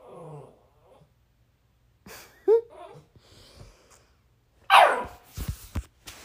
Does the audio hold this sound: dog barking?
yes